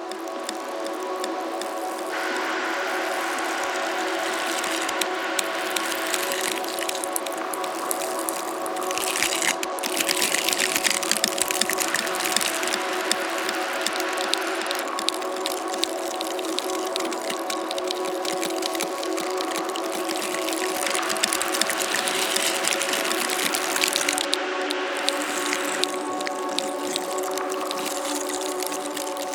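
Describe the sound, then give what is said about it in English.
Continuous dry scratching and rustling as hands rub and feel the coarse, bristly texture of dried whale baleen found on a beach, in uneven waves of friction over a steady low hum. “I had this recording of our friend John found on the beach of this lovely dried baleen”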